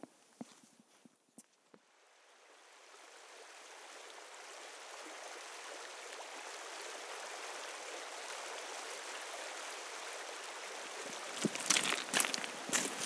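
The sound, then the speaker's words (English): A few footsteps give way to the steady rushing of the River Derwent, on its tree-flanked banks, which swells and then flows continuously, with some crunching steps returning near the end. “We made our way to the banks of the River Derwent, flanked by trees all about us, and I could just see through the branches up to Castle Crag.”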